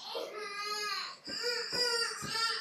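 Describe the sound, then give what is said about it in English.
A young boy having a meltdown cries in the background of a livestreamed Bible talk, a sustained, high-pitched wail broken by a few quick catches of breath, steady and fairly loud throughout with no other voices. “And so, do you guys hear this? Am I screaming in my background too? My boy is melting.”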